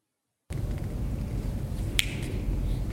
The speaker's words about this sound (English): and we hear what sounds like a finger snap to me. So check it out.